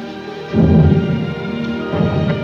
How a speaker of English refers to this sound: Cannon fire. Is that cannon fire? Or is it my heart pounding?